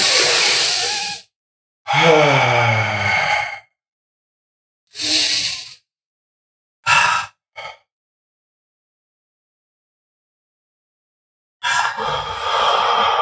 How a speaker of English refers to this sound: Stop what you're doing right now. Let's take deep breaths. Come on. Let's all take deep breaths.